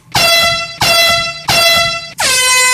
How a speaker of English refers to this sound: I should have come up with this earlier. Air horn.